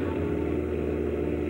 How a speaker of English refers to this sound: I rejoined Lenore in the car, started for home. After I'd driven for a few minutes